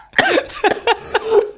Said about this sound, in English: Oh my god, I'm sorry. The laugh and the cough came at the same time. Oh dear. Oh no.